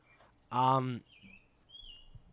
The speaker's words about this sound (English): In some ways, by the way, the birds are actually starting to drive me nuts now. I don't know if we're doing this again all summer. I was listening to the pod the other day, and I heard the birds. It started off very charming,